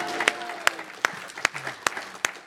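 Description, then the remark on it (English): A group in a school class claps together for a pupil in a steady rhythm: six sharp, loud claps spaced evenly about a beat apart, with faint murmuring voices underneath. “Give him a clap.”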